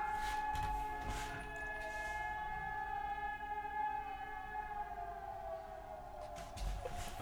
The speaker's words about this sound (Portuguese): Caraca, galera, parou. Olha isso. Eu tô gravando o programa aqui, tá tendo o teste das sirenes da cidade. Olha isso, ouve isso. Olha o medo, cara. Parece que vai acabar o mundo.